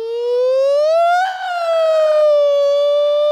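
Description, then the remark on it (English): A voice imitates a tornado siren wail: one long, loud tone rising slowly, peaking, then sliding gradually down, sustained for a few seconds with no other sound. “Sound like a tornado siren.”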